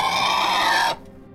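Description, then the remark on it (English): Two live pigs squeal in one loud, harsh, high-pitched burst that holds steady for almost a second, then cuts off abruptly, leaving only a faint low hum. No one speaks. “Then Rebecca went down to the basement to a room only she had a key to, unlocked it, went inside, and enjoyed her usual dinner of two live pigs.”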